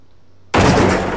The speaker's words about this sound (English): Behind you here, it sounded like several sonic booms.